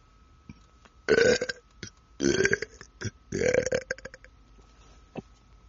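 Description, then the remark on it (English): A loud burp stretches out in three drawn-out, guttural bursts over a few seconds, with a faint steady hum in the background and no talking. “Actually, I probably got points for that burp, huh?”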